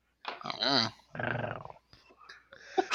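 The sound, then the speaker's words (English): A voice imitates a purr with a throaty, rumbling growl in two loud drawn-out bursts, the first wavering in pitch, followed by softer breathy noises. “Did you just purr?”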